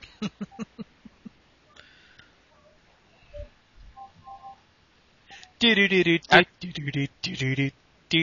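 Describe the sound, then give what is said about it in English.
A phone rings with short electronic tones and beeps, then a louder, melodic ringing pattern in repeated bursts, fairly loud, with some clicks at the start. “I'm gonna go take care of that real quick.”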